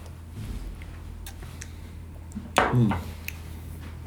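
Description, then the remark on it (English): Beer glasses clink together once in a toast, a bright knock with a short ringing tail, standing out against a quiet, steady background. “Well, can we cheers? Yeah, we can. Yeah, cheers.”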